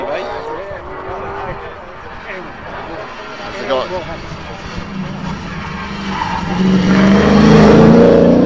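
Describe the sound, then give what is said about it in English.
A powerful Triumph TR8 car with automatic transmission revs and accelerates, its roar climbing in pitch and growing louder toward the end, with indistinct voices and crowd noise in the background. “Got a lot of grunt, that car.”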